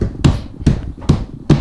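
Four heavy thumps of stamping on a table, spaced roughly evenly about every 0.4 seconds, each a loud low-heavy impact with a brief bright crack, with no talking.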